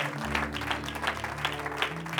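An audience at a Sunday morning church service claps to the Lord together in a loose, roughly steady rhythm, the crisp bursts of many hands rising and falling over a sustained low musical drone, with no one speaking.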